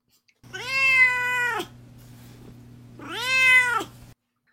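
A cat named Duarte meows twice, each a long drawn-out call with a rising then falling pitch, separated by a short pause, over a steady low hum.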